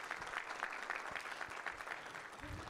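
An audience claps together in steady, dense applause, a broad wash of overlapping hand claps at moderate volume with no pauses, sustained throughout.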